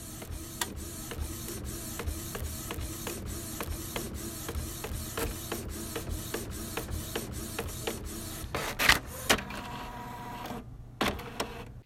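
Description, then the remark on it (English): A printer prints a contract, running steadily, its print head clicking and sliding back and forth in a regular rhythm, then finishes with a louder mechanical clunk and whir as the page feeds out. No voices. “Anyway, my printer's been trying to get me to sign some kind of contract for a while, so I guess I'll do that”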